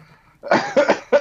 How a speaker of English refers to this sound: Oh, sorry. That was a little fake cough there.